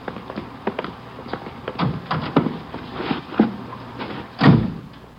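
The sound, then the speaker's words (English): Car doors opening and shutting in the rain: a run of clicks and dull thumps from handles and latches, ending in one heavier, louder slam. No one speaks. “Let's get back in the car.”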